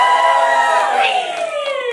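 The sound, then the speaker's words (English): A church audience yells back together in a loud, sustained roar of many voices, holding steady for about two seconds before easing slightly, with no clear words standing out, answering the question whether they are excited to be here this morning. “Maybe you didn't yell loud because you're holding a newborn baby, which there's a lot of those in this room this morning.”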